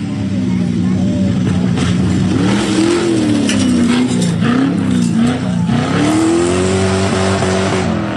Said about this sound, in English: I haven't put gauges in the car yet. And the car is so loud that you really know the difference between 4,800 RPM and 6,200 RPM. And that's the difference between 80 and 110.